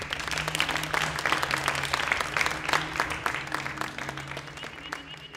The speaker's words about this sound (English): please join me in a round of applause for Clare